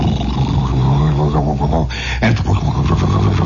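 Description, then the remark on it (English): A voice imitates a roaring tornado, a loud, sustained, rumbling growl like a freight train going 90 miles an hour, with a brief breathy break midway before the roar resumes. “And we heard this freight train, but it was a freight train that must have been going 90 miles an hour. You could hear this.”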